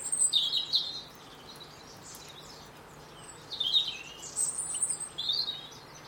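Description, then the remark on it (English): Bursts of high, twittering goldfinch calls and chirps as goldfinches squabble with each other, coming in two clusters, bright, with quieter gaps between them and no talking. “Goldfinches having a go at each other.”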